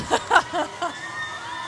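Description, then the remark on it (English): Schoolgirls from the Stella K. Abraham High School for Girls (SKA) cheering as they march in a parade on Fifth Avenue: four quick, high-pitched shouts in a rough rhythm, fading into a steady murmur of crowd noise. “Another great school celebrating on Fifth Avenue today.”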